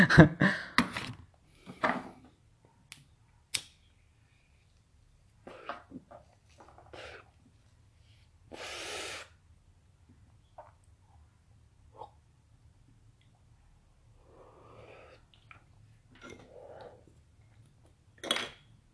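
Irregular bursts of harsh coughing after smoking weed, strongest at the start, broken up by wheezy breaths and a long raspy exhale, then a few quieter coughs trailing off near the end.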